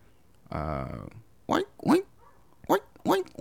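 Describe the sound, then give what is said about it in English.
A person imitates a pig: a buzzy, nasal grunt held for about half a second, then four short, loud oinks with a rising-falling squeal, in two quick pairs. “Hey, give me your best pig.”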